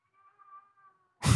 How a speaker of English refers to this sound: It's that guy's baby. It's a baby crying and a mother consoling him.